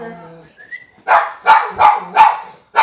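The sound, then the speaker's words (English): A neighbor's dog, a Pomeranian, barks in a quick, steady run of five loud, sharp barks, following a short, softer voiced sound at the start. “Is this a neighbor dog? Yes, it's a neighbor dog. What's he barking for?”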